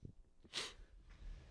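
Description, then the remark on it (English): A single sharp sneeze bursts out in a loud, hissing blast, followed by a moment of quiet breathing and low background noise. “What a sneeze there.”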